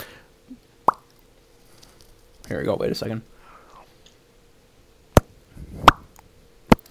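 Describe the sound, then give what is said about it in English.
Several sharp, short mouth pops, spaced irregularly, made by a person trying to do a pop noise with their mouth, with a brief stretch of quiet speech between the first pop and the final cluster of three. “I can't do a pop noise with my mouth.”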